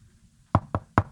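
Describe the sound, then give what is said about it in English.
Three sharp knocks on a door in quick succession, distinct, with a slightly uneven rhythm and a short hollow decay after each rap; no voices. “Oh, it's almost like you hear like it's almost like a knock on the door.”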